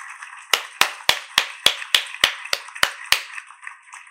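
Ten sharp hand claps land in a steady, quick rhythm, each one crisp and bright with a short ringing tail, followed by a moment of quiet. No one speaks.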